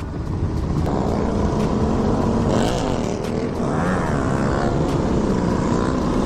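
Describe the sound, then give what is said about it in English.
A YouTuber rides his motorcycle with dual exhaust, the engine loud and droning steadily, then revving up and down a couple of times midway with a throaty exhaust note. No one speaks. “So check this out. Dual exhaust, man, burnt my misguided gloves.”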